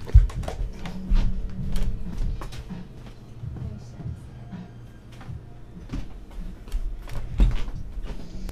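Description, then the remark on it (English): A door is handled and pushed shut, with a sharp thud near the start and another near the end, amid shuffling, clicks and a low murmur of voices in the background. “hold on, I'm gonna shut this door.”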